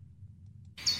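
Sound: birds singing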